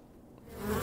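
A short insect buzz, like a bee or fly, rising in loudness, with a steady droning hum and no voices.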